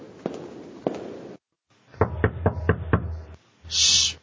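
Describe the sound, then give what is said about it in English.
Two separate knocks on a door, a brief silence, then a quick, firm series of five knocks, followed by a short burst of hissing noise. “Someone's knocking on my door.”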